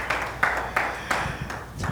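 A group claps hands together in a brief burst of applause, dense overlapping claps with a few sharper slaps standing out, moderately loud and without voices.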